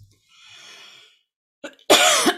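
A soft intake of breath, then one sharp, loud cough with a brief rasp just before it. No talking.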